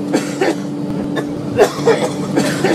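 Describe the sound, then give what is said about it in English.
A person in the seat in front on an airplane coughs over and over in harsh, rasping bursts, about six or seven in quick succession, with a steady mechanical drone humming underneath the whole time. “That's somebody coughing their brains out.”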